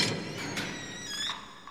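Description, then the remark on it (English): A giant door creaks open in a drawn-out, high, groaning squeal over a low rumble, with a few soft thuds along the way and no voices. “So the jackdaws hear this door, this giant door open.”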